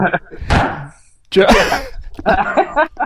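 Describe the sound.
A single sharp, loud gavel bang cracks out near the start as a speaker slams a gavel after finishing a remark, followed by people talking over each other.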